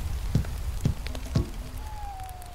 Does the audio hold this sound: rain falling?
yes